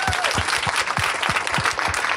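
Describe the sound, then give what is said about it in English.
A crowd breaks into steady, sustained applause for author Donna Brazil, many hands clapping densely together, filling the whole moment with no voices standing out. “Give her a big round of applause.”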